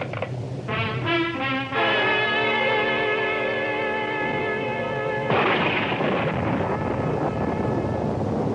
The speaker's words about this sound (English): I got in and told him and sat back, listening to the storm and looking out at the flood of rain on the streets.